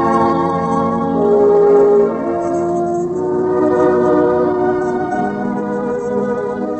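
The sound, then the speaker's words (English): A passenger train rolls along steadily, its loud continuous rumble layered with sustained, horn-like tones that swell slightly early on and then hold level throughout, with no voices. “On the train going back, she looked across the silent fields to the west.”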